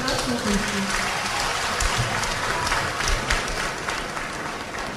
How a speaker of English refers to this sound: Continue clapping, continue clapping. Wow.